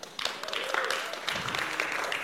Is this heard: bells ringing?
no